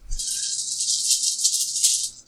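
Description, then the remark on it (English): Dice rattle steadily for about two seconds, a dense, bright clattering with no pauses, ending abruptly. No one speaks over it. “Also adding 2 dice.”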